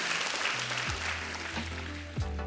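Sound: audience clapping hands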